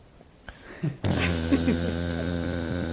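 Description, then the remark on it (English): A Piper Cub light airplane's engine drones in after a brief quiet moment, a steady, buzzing hum rich in overtones that holds at an even loudness to the end. “Piper Cub airplane.”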